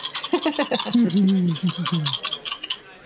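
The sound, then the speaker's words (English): Dice rattle and clatter in a steady, rapid stream of small hard clicks for about three seconds, rolled for a manipulation and persuasion check, while a low voice hums or murmurs underneath through the first half. “It's all the dice.”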